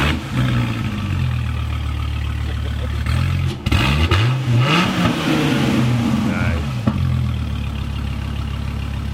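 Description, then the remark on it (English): A V10 sports car engine with side exhaust idles with a deep, steady rumble, then blips into one sharp rev that climbs and falls back over a couple of seconds before settling to idle again. It sounds loud. “So the V10 has its own sound.”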